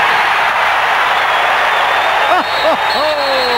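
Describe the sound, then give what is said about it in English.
A big basketball crowd at the Summit roars and cheers for Vernon Maxwell during a Cleveland timeout, in a steady, loud wall of noise, with a few shrill whistle-like tones sliding up and down near the end. “Listen to this crowd.”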